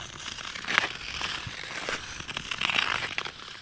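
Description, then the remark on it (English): Ice skates scrape and hiss across the hard ice of a canal skateway in steady strokes, a bright, crackly grinding that swells with each push and fades between, with no voices. “Early in the morning when the sun comes up and there's hardly anybody on the canal and you can just hear your skates, it's about the only thing you can hear.”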